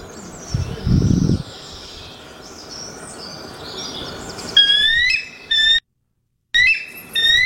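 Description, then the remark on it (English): A bald eagle lets out thin, high-pitched chittering whistles in quick bursts, broken by a short pause, after a low rumbling thump near the start. No one speaks. “Sounds like a damn seagull, doesn't it? Nobody would hear that and think that's a bald eagle.”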